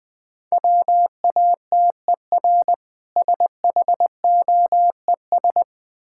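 Morse code sent at about 20 words per minute: a steady mid-pitched beep keyed into quick dots and longer dashes, grouped into letters with brief pauses, no voices.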